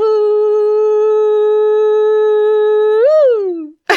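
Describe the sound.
A person mimics a loon's wailing call, holding one long, steady, loud note for about three seconds before swooping upward and sliding back down, alone.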